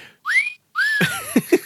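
Two rising slide-whistle-style whistles, the second trailing into a wobbly cartoonish tone with a few bouncy thumps, loud with no talking.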